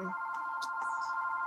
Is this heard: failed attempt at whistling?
no